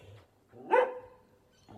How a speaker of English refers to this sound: There's a dog. Oh my god. Okay, there's a dog. The dog does not like me.